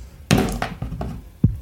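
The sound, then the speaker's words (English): A heavy d20 die tumbles across a piece of cardboard: a loud thunk, then a few rattling bounces of decreasing strength, and a final solid knock as it settles. No one speaks. “I have like a I've like got this piece of cardboard I'm rolling on. I don't know if that's why it's making so much noise.”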